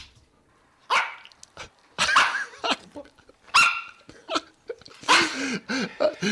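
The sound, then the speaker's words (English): A small dog yaps, letting out a string of sharp, high-pitched barks in irregular bursts with brief pauses and some snuffly breaths between them, played for a dog park segment on Triple R radio. No one speaks. “So we've gone from the Labrador woof to the little yappy tail.”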